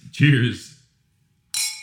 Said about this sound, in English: We're drinking wine for this one. Yes, we are. This is cheers.